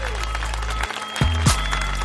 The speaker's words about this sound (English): Can we get some claps, please? Can you be with me on my anniversary?